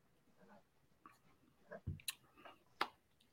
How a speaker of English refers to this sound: So this is from Sycamore Brewing, and it's called stone fruits. It's a wheat ale with fruit. And it's got juicy mango, sticky peach, and sweet nectarine. So for me, let me take a sip of this thing real quick.